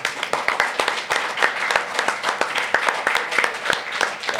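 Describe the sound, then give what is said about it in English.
A crowd applauds steadily, many hands clapping at once in a dense, bright patter with sharper individual claps standing out. The sound stays fairly loud and even for the whole stretch, with no talking. “You know what it sounds like is that intermittently somebody says something really profound and then we all just applaud for we it. We just applaud.”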